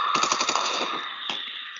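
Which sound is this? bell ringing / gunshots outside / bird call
gunshots outside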